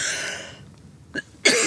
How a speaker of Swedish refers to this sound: Man får hosta här.